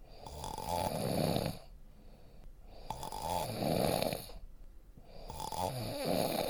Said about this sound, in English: That's right. It's me. You can only hear me snoring the whole time.